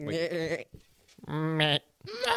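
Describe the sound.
A goat bleats three times, loud, wavering cries with short pauses between them, the last one cut off at the end.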